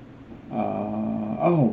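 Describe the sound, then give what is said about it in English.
A dog in the background lets out a drawn-out, growly vocalization lasting about a second, ending in a short falling whine-like yelp, with no talking. “Why don't you ask your dog in the background?”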